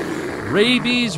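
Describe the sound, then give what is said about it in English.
A man imitates lions fighting with his voice, two short raspy growling roar bursts in quick succession, fairly loud. “Let's see a lion fight, man.”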